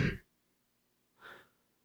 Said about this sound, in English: It was a good way to, get that out. Get that yawn out.